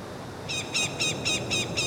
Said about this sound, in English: What's that? Is it a bird? It's not a plane. It's not a plane. It's maybe some kind of hawk? Could be a hawk. It could be a crow as well.